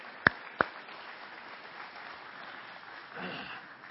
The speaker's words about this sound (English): And so if any of those 15 are here today, if you could stand, is any of the 15 or anyone that, okay, they all didn't get an hour of sleep. So let's clap for those that did.